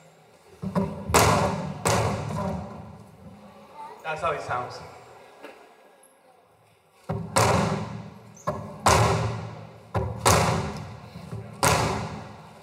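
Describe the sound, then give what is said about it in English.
A man strikes a mural with a hammer: heavy blows in a rapid, irregular series of loud thuds mimicking gunshots, with a brief pause midway as a voice speaks, then more forceful strikes. “He started to strike the mural with the hammer, mimicking the sounds of gunshots.”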